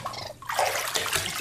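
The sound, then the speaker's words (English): A raccoon splashes water in a bathtub, a continuous churning with small irregular drips and slaps, fairly loud and with no voices. “Oh, are you splashing?”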